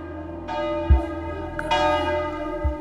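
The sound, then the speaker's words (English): Church bells ring out in overlapping peals, several strikes layered with long shimmering sustain and deep low booms, sounding full with no voices present. “Do you hear those bells?”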